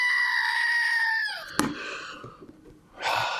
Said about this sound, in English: It's time for the goat. What is it? Oh, the goat?